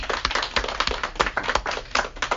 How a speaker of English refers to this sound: But because you're so excited for me to get out of your face, I want a round of applause for these two wonderful speakers.